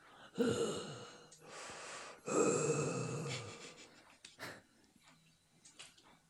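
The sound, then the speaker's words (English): A person imitates a film villain's heavy, rasping mechanical breathing: two long, loud breaths with harsh noisy texture, followed by a few softer, shorter breaths and snorts as it trails off. “He said after the heavy breathing. His asthma attack.”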